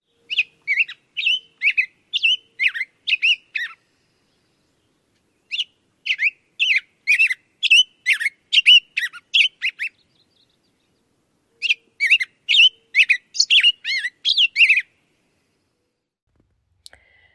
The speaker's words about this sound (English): The first bird we heard today, bird number one, is the black-headed grosbeak.